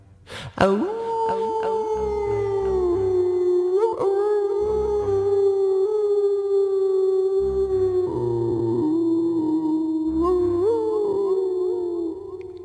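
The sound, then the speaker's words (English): Voices howl at a full moon close to midnight under a clear, cool sky, imitating wolves: long, sustained howls rise and waver in pitch, continuing nearly unbroken for about twelve seconds, loud, with a lower voice joining in at intervals. “We howled at the moon just for a moment, pretending we were wolves.”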